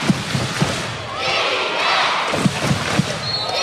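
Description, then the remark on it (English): A large arena crowd roars and cheers steadily at a basketball game between Melbourne United and the Sixers, with a swelling wash of noise in the middle, while a basketball thumps against the court in sharp repeated bounces near the start and end. “And hear the crowd.”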